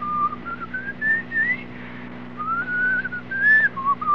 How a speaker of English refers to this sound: So, stand by. I will whistle another few bars for you in the darkness here.